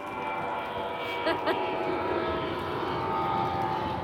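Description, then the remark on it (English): A steady, droning engine roar fills the scene, like a plane passing overhead, with a faint hum of voices in the background. “I was going to say, and not one of your planes.”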